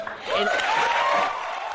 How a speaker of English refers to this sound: All right, so you listen to him clap there.